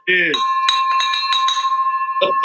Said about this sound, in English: Yeah. Woo! Man, I've been waiting on that for forever. That's awesome, that bell. Well deserved, man.